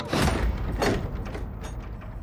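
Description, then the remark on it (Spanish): A door swings shut with a dull thud and a brief rattle of the latch, followed by a short, quiet settling of room tone. No one speaks. A man closes the door of a room after he and another man have entered. “Al llegar al cuarto, Tojo abre la puerta. Lo hace pasar al turco, luego pasa a él y cierra.”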